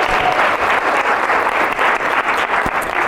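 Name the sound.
round of applause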